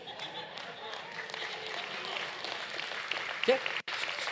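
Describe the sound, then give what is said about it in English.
An audience claps steadily for about four seconds, a dense, crackling wash of many hands with no clear rhythm, joined by a brief voice and a whoop near the end. “You clapped because you didn't want to be singled out.”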